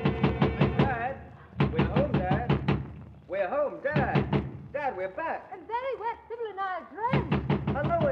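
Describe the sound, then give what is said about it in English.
Rapid, loud bursts of pounding on a front door come in volleys, broken up by a stretch of agitated, overlapping voices clamoring and shouting, before the hammering knocks resume near the end. “Voices he quickly recognizes are clamoring at the front door.”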